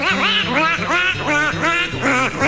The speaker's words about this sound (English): Why, yes. Yes, there is. It's the black-bellied whistling duck. This large, goose-like duck, most commonly seen and sometimes in pretty big numbers in places like Texas and Louisiana, has been spotted increasingly in recent years